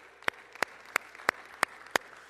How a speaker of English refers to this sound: Praise the Lord for our wives. Let's give our wives a round of applause.